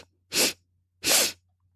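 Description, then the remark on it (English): Sharp, breathy sniffs through the nose, three quick sniffs as part of a breathing exercise, come in two short bursts separated by a brief pause, fairly loud, with no talking. “Inhaling 3 quick sniffs.”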